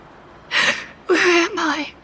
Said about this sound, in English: She gasps, her eyes wide with terror.